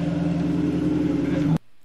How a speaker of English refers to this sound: I go, why is he doing burnouts? What's he doing?